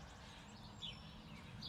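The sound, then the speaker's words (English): Faint bird chirps, a couple of short high tweets, rise briefly above a steady low rumbling background hum, with no voices present, at about 6:45 in the morning in spring. “So I am in competition with the birds today.”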